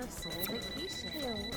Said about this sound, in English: The line's still around the block. And the phone calls just keep coming.